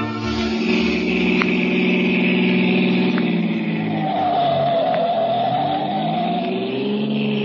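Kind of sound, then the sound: vehicle, car driving fast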